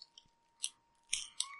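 Crunchy chewing on a frog snack: three or four sharp, crackly bites in an uneven rhythm, fairly quiet, with short pauses between them and no talking.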